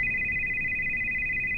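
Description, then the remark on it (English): Veronica's mobile phone rings with a steady, high electronic tone that holds for the whole moment, over a low, rumbling background hum with no one speaking. “Temple talk about how to proceed without letting harm fall in Rochelle's way, Veronica's phone begins to ring.”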